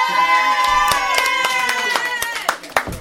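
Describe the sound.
A round of applause for a show's guests: loud, irregular hand claps at a steady level throughout, mixed with sustained voices that sound like cheering or whooping.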